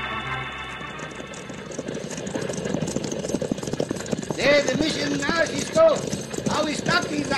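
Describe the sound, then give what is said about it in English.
A six-horse artillery team gallops with pounding, rapid hoofbeats and a heavy rolling clatter of artillery wagons, while voices shout out over the din near the end. “No single hombre can drive a six-horse hitch of artillery over this country and remain alive.”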